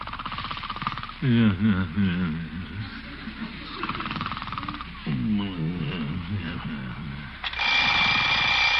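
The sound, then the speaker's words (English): An alarm clock bell starts ringing loudly near the end, a dense metallic clatter, after a person's drawn-out sleepy groans and yawns. “Oh, alarm.”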